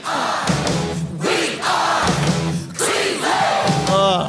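The Cleveland Guardians baseball team fight song, sung by a loud group of voices in bold, chant-like phrases, each line separated by a short pause, with a steady, rousing rhythm.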